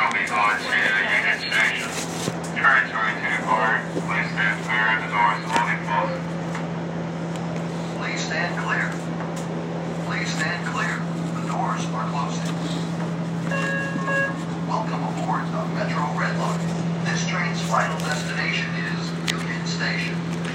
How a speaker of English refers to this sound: So we are now on the train, ever precariously unloading our items.